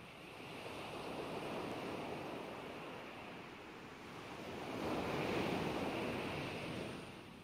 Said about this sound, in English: Fade to black, and then we get just, what, oceans hitting the shores. Just oceans. Oceans. Waves hitting the shores.